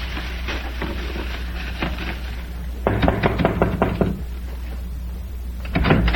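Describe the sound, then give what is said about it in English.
A door is knocked on in several bursts of quick raps: a faint series first, then a louder cluster of about six knocks, and a final short pair, with no talking. “As if you were waiting for someone to knock at your door.”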